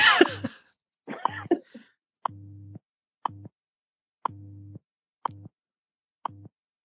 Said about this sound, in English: Calling WWV. Work. Phone call. WWV. There it is. There it is.